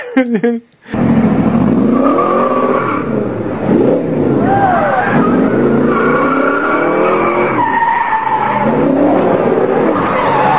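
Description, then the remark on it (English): A car's tires screech and skid loudly and continuously as it runs through a stoplight and crashes into another car, with wavering, sliding squeals over a rough engine roar, intense for several seconds after a brief opening jolt. “And she goes and runs through a stoplight and crashes into this car.”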